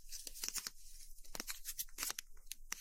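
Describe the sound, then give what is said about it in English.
Crisp crunching and crinkling of stiff umbrella fabric, irregular bursts of crackly texture over a quiet background with no talking, intimate ASMR-style. “So here she is crunching an umbrella.”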